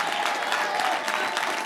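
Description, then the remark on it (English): A church audience applauds its women, many hands clapping at once in a dense, bright patter that stays loud and even throughout, with no voices standing out. “Come on, let's just give a round of applause to our amazing ladies.”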